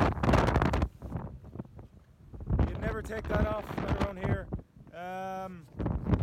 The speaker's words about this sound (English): It keeps me straight with these massive waves and this hectic wind.